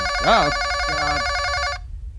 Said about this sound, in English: Sorry. That is not supposed to happen. You shouldn't be able to hear the phone. Usually the light flashes and, okay, whatever.